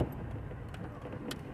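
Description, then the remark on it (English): A car moves slowly as it is turned around, its low engine rumble and road noise steady, with a few faint metallic jingles and clicks over the top. No one speaks. “I got to turn the car around. There we go, turning the car around.”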